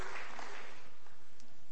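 A crowd claps together in a dense, steady patter that sounds somewhat distant and gradually softens toward the end, with no voices over it.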